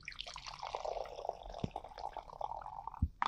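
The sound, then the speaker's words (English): A lemon and strawberry apple cider vinegar beverage pours steadily into a glass, a continuous splashing trickle with a few brief clinks and bumps, fairly quiet, with no one speaking. “So let's pour this one in.”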